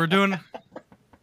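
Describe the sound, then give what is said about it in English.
A chicken lets out a loud, harsh squawk, then follows with a quick run of four or five short clucks that fade away, with no one talking. “Did that bird say Holocaust?”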